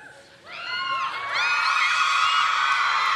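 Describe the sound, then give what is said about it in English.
A crowd of women in the room erupts in loud, high-pitched cheering and whooping, rising sharply after a brief quieter moment and holding at full volume as many voices overlap. “Now, men, did you hear the roar of the woman in the room?”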